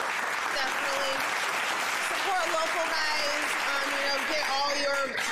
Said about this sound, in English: American Carpet Cleaners, Flowers by Erica, and the Good Leaf Delivery. We appreciate it. Round of applause one more time.